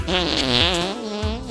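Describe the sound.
A person blows a long, buzzy raspberry with their mouth, imitating a fart. The sputtering sound is loud, lasting well over a second with a wobbling pitch.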